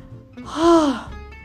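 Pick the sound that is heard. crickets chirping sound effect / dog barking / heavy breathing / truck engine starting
heavy breathing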